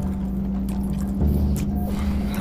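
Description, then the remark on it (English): A steady, low engine drone rumbles continuously, like a truck cruising along the road, with faint rattles and road noise layered over the constant hum. “This truck actually drives pretty well.”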